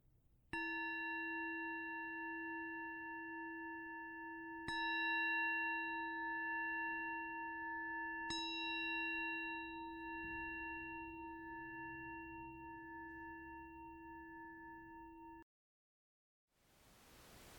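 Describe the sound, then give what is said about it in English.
A meditation bell is struck three times, a few seconds apart, each strike adding to a steady, layered ringing tone that sustains until it cuts off abruptly, followed by soft hiss. “And when you hear the sound of the bell, if your eyes have been closed, then gently opening them or raising your gaze.”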